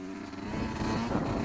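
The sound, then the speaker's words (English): A man rides a motorcycle past a police officer on a bicycle in Britain during lockdown, the engine droning steadily, its low rumble holding a fairly constant pitch with slight rises, as if the bike is cruising along. “Here's a guy on a motorcycle.”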